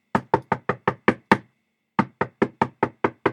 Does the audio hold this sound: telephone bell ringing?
no